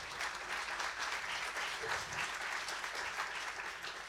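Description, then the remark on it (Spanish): A soft, polite golf clap from a small group, a steady patter of light hand claps at low volume lasting several seconds with no voices over it. “Aplauso de golf.”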